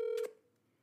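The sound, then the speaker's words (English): A single short electronic phone tone sounds briefly over a speakerphone as a friend is being called, a clear steady beep like a dialing or call-connect signal, then fades into a quiet line hiss. “Let's call Dylan. Yeah, call him and put him on speaker.”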